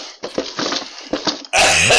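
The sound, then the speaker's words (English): A few short, breathy vocal bursts build up, then a loud, harsh sneeze blasts straight into the microphone, distorting into a sustained wash of noise that runs to the end. “you shouldn't sneeze into the microphone when you're.”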